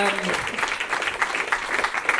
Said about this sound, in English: And I've just written end to rapturous applause. So. And they did. Well done.